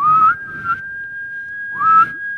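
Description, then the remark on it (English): A halftime whistle, seemingly imitated by a person whistling: one long, steady high tone, punctuated by two sharper, louder blasts near the start and end. “All right, whistle, whistle, whistle, whistle.”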